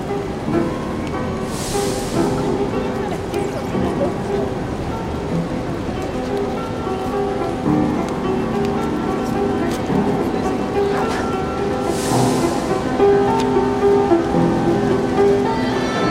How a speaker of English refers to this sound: It's raining.